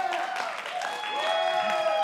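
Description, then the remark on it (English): Steady applause from an audience, a dense wash of many hands clapping at an even, fairly loud level, with some sustained vocal tones mixed into the noise. “But if you're going to clap, clap.”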